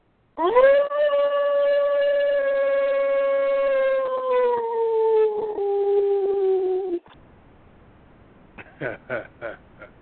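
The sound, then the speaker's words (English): A person imitates a wolf howl: one long, loud vocal howl held for about six seconds, its pitch slowly sagging, then a short pause and a few brief voiced bursts. “… is howling at the beginning of the damn show”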